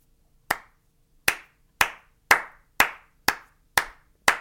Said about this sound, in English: One second. I have to golf clap for Ryan.